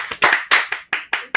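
Three hand claps ring out in a quick, steady rhythm as praise for a good answer: sharp, loud smacks, slightly ragged as if a few people clap together. No voices are heard.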